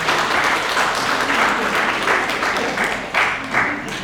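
Sustained audience applause for a participant after a group circle exercise: a dense, steady wash of many hands clapping at fairly even loudness for about four seconds, with a few sharper bursts of claps near the end.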